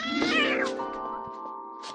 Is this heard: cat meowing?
yes